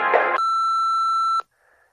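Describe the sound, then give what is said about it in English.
A short burst of muffled noise gives way to a single loud, steady electronic answering machine voicemail beep lasting about a second, then it cuts off to near silence. “So please stop explaining and wait until the beep.”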